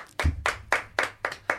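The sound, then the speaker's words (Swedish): A short burst of hand clapping: about six sharp, bright claps in an uneven rhythm, moderately loud, with no voices. “Applåd igen.”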